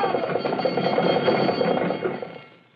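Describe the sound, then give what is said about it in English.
A fire engine bell clangs in a rapid, continuous metallic ring, bright and steady, holding at an even level for over two seconds before fading out. No one speaks. “All right, keep that bell going.”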